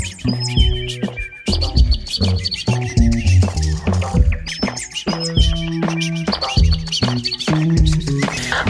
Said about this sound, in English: Sure it's getting a little weird, but why do birds suddenly appear? Perfect summer day. Hello to June and say goodbye to May. Au revoir, auf Wiedersehen and ciao. These birds are beginning to annoy me now.